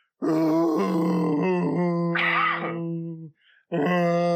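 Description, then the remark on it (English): Someone imitates a wounded creature howling: a loud, drawn-out groaning wail with a wavering pitch. It breaks off briefly, then one more sustained cry begins, with no talking. “As it starts to just like the night air is coming into this room and wafting and around this rotting food and just howling at, from this wound it just received and bouncing like super hard now.”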